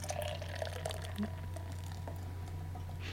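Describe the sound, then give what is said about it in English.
Beer pours steadily into a mug, a continuous splashing, fizzy gurgle lasting several seconds over a low background hum, with no one speaking. “I'm going to pour it into my Brett Kern official mug.”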